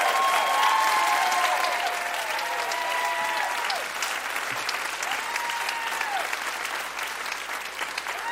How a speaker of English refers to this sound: Good clapping. Major clappage.